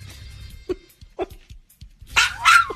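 A dog gives a few short, sharp barks and yips, then two louder, longer bark-howls at the end, with a low rumbling hum underneath and no talking.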